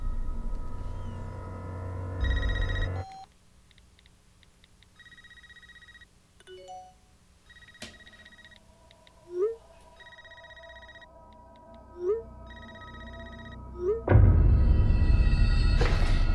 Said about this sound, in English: But wait, I hear something. I think it's a phone call. Is that a phone? I haven't had a landline in a long time.